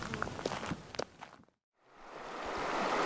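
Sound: flowing river water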